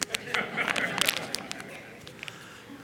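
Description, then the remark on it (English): A plastic Canadian $5 banknote is crumpled, giving a dense run of irregular crinkling crackles that continue steadily for a few seconds at moderate loudness. “The other is wrinkled and crumpled. That I've been trying to crumple it all night.”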